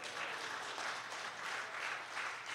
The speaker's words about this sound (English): How about, first of all, a big round of applause to our worship leader this morning.